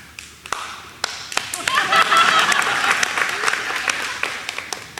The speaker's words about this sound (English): That was a very spontaneous applause from the people here.